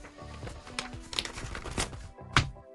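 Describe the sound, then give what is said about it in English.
Tuesday afternoon paper shuffling into a neat pile: a steady run of dry, irregular rustles and crinkles, ending with one sharper, louder swish before it goes quiet. No one speaks. “I've done some very, very fine Tuesday afternoon paper shuffling there.”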